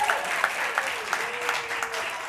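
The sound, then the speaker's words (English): An audience claps together in a dense wash of applause for MTSU students, with a few sharper claps standing out at a steady pace and a thin sustained tone faintly running underneath. “Can we all just collectively give all of our MTSU students a round of applause?”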